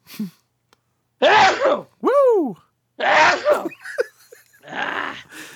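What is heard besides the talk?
sneeze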